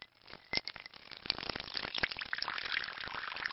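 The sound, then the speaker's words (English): Sake pours steadily into a wooden masu cup set on a saucer, a continuous splashing trickle with light clinks and ticks, growing slightly fuller over a few seconds with no one talking. “Well, traditionally you can put glasses inside the Masu, but I prefer it this way with a saucer underneath. Just pour, dear.”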